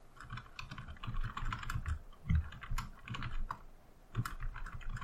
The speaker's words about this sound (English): I hope this isn't you typing the answer to him. I want this to be an out loud answer, since it was an out loud question. I hate that I hear you typing.